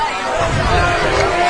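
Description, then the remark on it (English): Crowd noise at Springfield High School's football stadium in Springfield, Pennsylvania, during a game against Marple: a steady, fairly loud hubbub of many blended voices murmuring and calling out, holding level without any single clear speaker. “Crowd starting to make noise here at Springfield High School, located on Springfield, Pennsylvania.”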